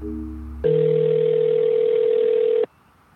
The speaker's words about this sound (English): why don't we try to phone that number? Okay. Okay, here we go. I'm nervous.